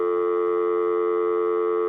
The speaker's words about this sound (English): Or when you leave the phone off the hook, that burp, burp, burp, burp, burp, burp, burp, burp, sound and you don't hang up the phone. Yeah, you gotta make it a little louder in case you forgot.